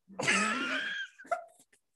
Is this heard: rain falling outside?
no